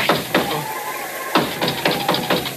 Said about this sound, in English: Who's that? Oh, great. That was the sacred nine knocks of Oompah Papa.